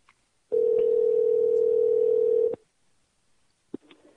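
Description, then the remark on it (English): A loud, steady telephone tone hums at a single low-mid pitch for about two seconds after a hung-up call, then cuts off abruptly, followed by a sharp click and faint rustling. “Phone cut off.”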